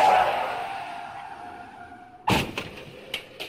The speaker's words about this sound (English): No, can I choose the sound? Yeah, you could choose the sound. A horrible car accident.